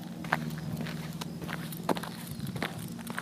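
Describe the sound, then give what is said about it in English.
Footsteps of a woman walking on a hike, crunching along a hiking trail in a steady walking rhythm, each step a short gritty burst, over a constant low hum of background noise. “who sent the sound of her walking on a hike”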